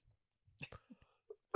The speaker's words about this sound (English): Sorry. You just coughed right all over me. That's how coronavirus started.